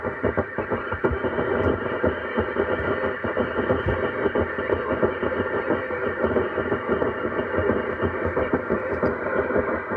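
A helicopter radio transmission comes through a radio as a steady, fairly loud wash of crackling, muffled static with a choppy, rumbling texture that never lets up, and no clear words.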